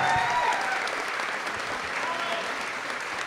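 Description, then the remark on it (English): The audience at an IGN event applauds steadily, dense clapping holding at an even, fairly loud level for the whole stretch, with a few faint voices mixed into the noise near the start. “So the biggest round of applause goes to everyone in the audience right now.”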